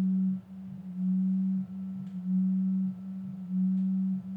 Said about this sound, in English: Why does that sound like a pot of whales? So we had to pause the podcast for a second because we heard like this weird humming that came out of nowhere. Mm-hmm. I thought it was like my phone vibrating or something. Was it your phone on the table?